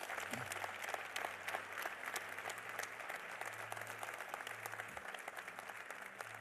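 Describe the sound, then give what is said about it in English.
A church audience applauds the unmarried people who are standing: a steady, dense wash of many hands clapping at an even level throughout, with a low hum running underneath and no voices standing out. “Those of you who are seated, will you give those who are standing a round of applause, please, everybody?”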